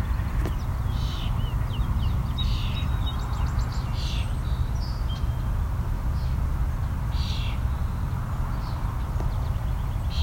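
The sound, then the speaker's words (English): European starlings squawk in scattered harsh bursts, with a few thin whistles mixed in, all over a constant low background rumble. “You can also hear some European starlings as well. There's our starlings squawking.”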